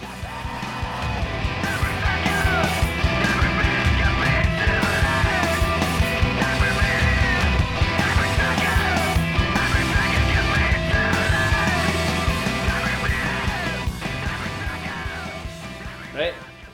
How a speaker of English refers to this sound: How the lyrics are kind of cool, and then the wee drums and riffs are like kind of really mad. Like the next wee kind of bit sounds like a pure screamo Rubik's cube.